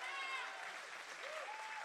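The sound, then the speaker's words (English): A church audience claps steadily in a dense wash of applause, giving God a hand for the people baptized in recent weeks, with excited cheering voices and a rising whoop riding over the top throughout. “Can we give God one more hand clap for that?”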